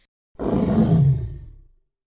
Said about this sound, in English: The witch's half broomstick flew into a cloud, and the witch heard a roar that was scary and loud. I am a dragon as mean as can be, and I'm planning to have witch and chips for my tea.